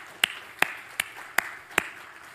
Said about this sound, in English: The church leadership came together in the spring and developed a practical vision for our church. If you were there that day, please stand up and be acknowledged. I want you to give these people a round of applause.